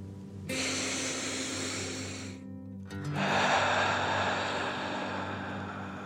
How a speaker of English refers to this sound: As you continue to float, let's take three more deep dragon breaths. Breathe deep, in and out.